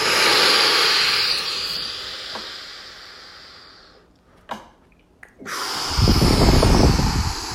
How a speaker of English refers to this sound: just take a deep goddamn breath. Do it. Seriously, just do it. Unless you can't. Like if you're on the train, I get it. But if you can do it, do it. Deep breath in.